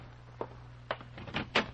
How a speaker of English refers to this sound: Well, it was beginning to turn gray outside, and the jarring thump of the paper grazing my door told me a new dawn was with us.